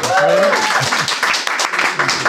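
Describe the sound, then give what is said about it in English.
Steady, loud applause from a crowd welcoming Chief Technical Officer Adrian Newey, designer of the F1 car RB19, a dense crackle of many hands clapping that carries on without a break, with a brief voiced cheer or call rising over it near the start. “So ladies and gentlemen, can we have a round of applause for the Chief Technical Officer, Adrian Newey?”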